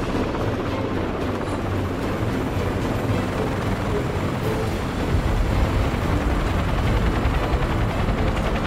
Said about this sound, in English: We set down light in the center of the helipad.